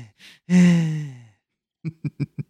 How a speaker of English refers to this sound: I'm going to breathe in, heavy breathing, whatever I want to do.